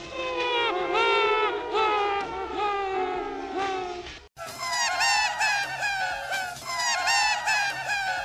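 A man's laughter on tape, sped up and manipulated, loops into a loud, continuous chorus of shrill, squawking seagull-like cries, overlapping and repeating, with a brief abrupt cut partway through before the cackling resumes.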